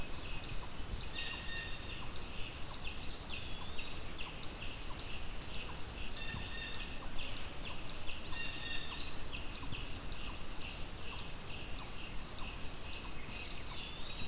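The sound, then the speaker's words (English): A yellow-billed cuckoo calls with a long, steady series of hollow clucking notes repeated at an even pace, set against a constant hiss of background noise, with no voices present. “A yellow-billed cuckoo.”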